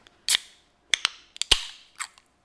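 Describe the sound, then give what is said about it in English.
A drink can being cracked open: a series of sharp metallic clicks and snaps across a couple of seconds, several trailing into brief fizzy hisses, with no talking. “Everybody loves the sound of a cracked drink.”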